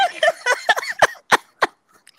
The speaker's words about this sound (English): No, it's just my dog.